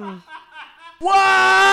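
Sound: scream sound effect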